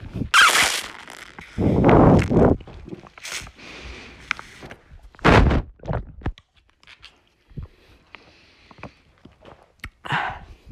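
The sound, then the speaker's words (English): Wet slurping of juice in several loud bursts with short pauses between, followed by quieter sips and small mouth noises, with no talking. “Alright, ASMR juice slurping.”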